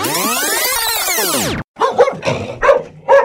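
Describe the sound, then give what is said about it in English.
A long descending swoosh-like sweep gives way to a dog barking about four times in quick, uneven succession, fairly loud, with no talking. “2 days later, I love this dog.”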